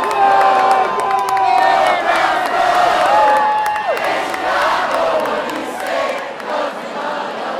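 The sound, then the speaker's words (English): A large crowd at the Chicago Cubs World Series parade cheers and screams continuously as the team's double-decker buses pass: dense overlapping voices with shrill whoops and sustained high-pitched yells rising above a steady roar, loud throughout without letting up. “Chicago Cubs are finally passing by the double-decker. Buses are finally making their way past.”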